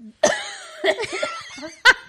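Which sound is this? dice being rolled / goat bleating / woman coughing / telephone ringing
woman coughing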